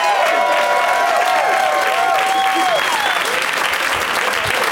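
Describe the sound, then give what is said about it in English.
A crowd applauds loudly and steadily as guests Mark Ellis, Josh Wolf, Ross Marquand and Freddie Prinze Jr. are welcomed, a dense wash of clapping with cheers and shrill whistles rising over it, sustained throughout without easing. “Please give a big warm welcome to Mark Ellis, Josh Wolf, Ross Marquand, and Freddie Prinze Jr.”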